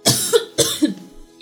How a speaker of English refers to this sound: do you want it to be the … coughing show?